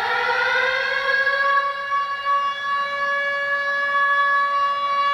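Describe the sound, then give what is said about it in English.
A loud, steady alarm siren wails on a sustained tone, its harmonics sliding slightly as the pitch settles, holding continuously for about five seconds with no voices. “Ring the alarm, we've had two new patrons subscribe to our Patreon this month.”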